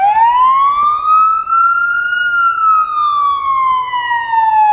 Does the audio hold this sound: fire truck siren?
yes